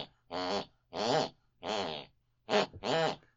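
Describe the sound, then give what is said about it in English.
A mother snores in the room next door in five short, voiced bursts at a steady rhythm, each with a buzzing, wavering pitch that almost sounds tuneful, echoing what she listened to before bed, with brief silences between and no talking. “Whatever my mother listened to before she went to bed picks and pulls on her unconscious mind, and that is what she snores.”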